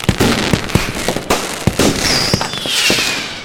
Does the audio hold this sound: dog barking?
no